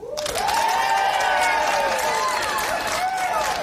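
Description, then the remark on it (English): An audience breaks into loud, steady applause in answer to being asked who has ever had an anxiety attack while high; it starts abruptly and holds for several seconds, with whoops and cheering voices rising over the dense clapping. “How many of you, by round of applause, have ever had an anxiety attack whilst high?”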